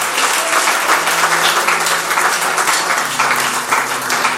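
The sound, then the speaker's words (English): Steady, sustained applause from a large audience for the message spoken that evening, dense and loud throughout with a faint murmur of voices beneath the clapping. “A round of applause for the way.”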